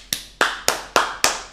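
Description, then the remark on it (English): A clapping sound effect: six sharp hand claps in a steady, fairly quick rhythm, each a crisp bright smack with a short fading tail, with no voices. “I'm putting sound effects behind this one. Oh, don't worry. There's going to be some real applause in the back.”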